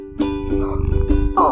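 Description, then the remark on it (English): A cat purring in a low, rumbling rhythm of quick pulses that swell and fade over a second or so, with a steady tonal hum running behind it. “Here's the purr.”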